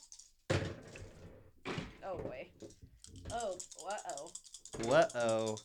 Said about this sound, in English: So you roll all of the dice in front of your